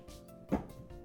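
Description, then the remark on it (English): A single short, dull thud as a cat knocks a Luffy figure off a TV stand onto the floor, with a faint steady hum and no talking. “I hope you heard that thud, because that was him looking at me and then knocking Luffy on the floor.”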